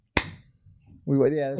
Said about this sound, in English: I had to ask him about that too, because I was like, why the fuck do I have to clap before every time? Apparently, that's how you sync this. The sound.